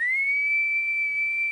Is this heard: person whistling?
yes